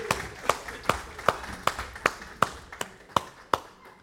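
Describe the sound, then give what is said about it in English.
A crowd claps together in a steady, even rhythm, about eleven sharp claps in four seconds, with a faint murmur of voices underneath, cheering on the Gospel Quest children as they go upstairs to class. “For those of you visiting with us or watching online, we like to cheer our kids on when they go to class to serve the Lord.”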